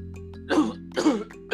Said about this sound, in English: I feel a cough. Sorry, everyone. I feel a cough coming up the back of my throat.